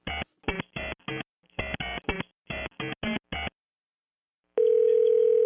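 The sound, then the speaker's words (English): A quick series of short phone dialing beeps in uneven bursts while placing a call, a brief silence, then a steady, loud telephone tone humming on alone. No one speaks. “Can we get him on the phone?”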